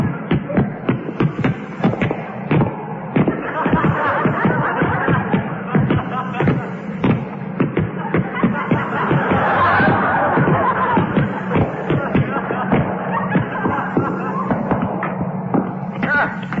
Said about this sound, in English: Funny noise this lift makes.